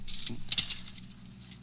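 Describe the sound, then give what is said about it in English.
Light metallic clinks and small rattles as metal paper clips are handled, a few quick taps clustered early and one more at the end, fairly quiet over a low hum. “Here are a couple other different kinds. And yet they're all called paper clips.”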